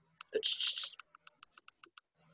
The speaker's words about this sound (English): Do what you did again. Yeah. I think it was your headphones clicking together.